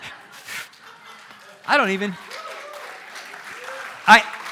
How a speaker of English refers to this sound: Look, don't applaud me.